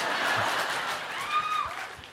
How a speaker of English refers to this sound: Don't applaud that.